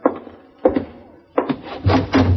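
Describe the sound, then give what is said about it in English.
A door being opened: a few hollow wooden thunks and latch knocks, then a short burst of scraping and rattling as it swings, with no voices. “No, can't open door, Mr.”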